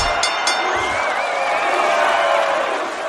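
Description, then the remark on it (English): A large boxing arena crowd roars and chants a Gaelic word continuously after a woman fighter knocks out her opponent, a dense, loud wall of voices with rising shouts and a couple of sharp whoops near the start. “With the crowd chanting that Gaelic word.”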